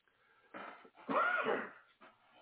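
A person having problems breathing makes a labored wheezing breath, a raspy strained inhale followed by a longer, louder whistling gasp, then a faint rasp trailing off. No one speaks.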